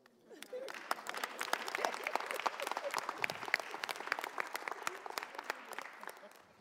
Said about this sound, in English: You didn't clap well.